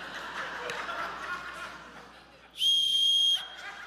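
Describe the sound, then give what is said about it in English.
A single sharp, shrill whistle blast rings out loud for about a second, following a stretch of soft chuckling and murmuring. “Do I help him? Where's my whistle? Woo!”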